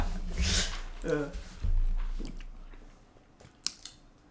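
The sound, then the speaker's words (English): A neighbour's dog barks a few times in a shared back yard area, short sharp yelps spaced about half a second apart, with muffled voices and background noise around them. “You don't know who's barking right now.”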